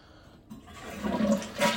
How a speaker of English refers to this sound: Well, I'm going to turn the lights on so I could see if it's working or not. So what I like to do is I like to flush.